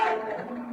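A cow in an enclosure lets out a loud, drawn-out moo at a man who crawled under the fence, a deep, droning bellow that holds steady for under a second. No voices can be heard.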